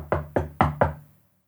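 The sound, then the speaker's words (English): Four firm knocks on a wooden door with a shuttered viewport in a quick, slightly uneven rhythm, fairly loud, each with a short hollow ring before silence. “And he does a knock on the door.”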